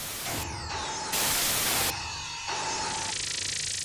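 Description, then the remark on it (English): A zapping energy blast as a Dalek fires its weapon, with descending electronic sweeps, followed by a loud burst of harsh white-noise static filling the screen. A thinner hiss and steady electronic tone linger afterward. No one speaks. “One of the Daleks takes aim at us, fires, and static fills the screen.”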